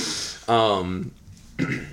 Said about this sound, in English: Oh, no, he's squirting out a couple coughs.